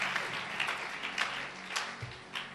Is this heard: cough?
no